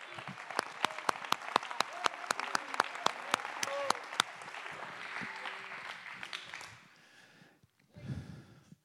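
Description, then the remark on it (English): A church audience claps in a steady, rhythmic beat for about four seconds to give praise to Jesus during a sermon, then the clapping fades into a loose murmur of voices and trails off to near silence. “Somebody clap your hands with me and give him praise and glory right now.”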